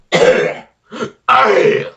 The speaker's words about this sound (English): I'm coughing, you bitch. I know, but I can't help it.